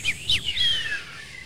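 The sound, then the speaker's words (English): A man whistles a short melody: a couple of quick chirpy notes, then a longer sliding whistle that drifts downward, clear, with no talking. “The Family Guy whistle.”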